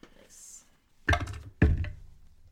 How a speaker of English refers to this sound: I guess I'll roll some hit dice. I'll roll that.